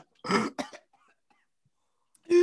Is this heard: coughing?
yes